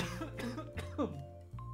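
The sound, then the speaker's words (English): A person coughs several times in short, harsh bursts, with a steady low electrical hum running underneath throughout. “Just a moment. I got a cough.”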